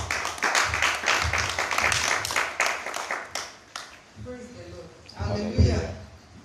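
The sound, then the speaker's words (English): A church audience claps in a brisk, uneven burst of overlapping hand claps for about four seconds for a woman called on to speak. The applause fades, and a voice begins speaking, with a few scattered claps underneath. “Let's clap for her.”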